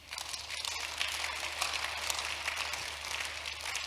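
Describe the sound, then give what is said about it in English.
An audience claps steadily together, a dense crackling wash of many hands that holds at an even level for a few seconds with no voices over it. “Why are you not clapping?”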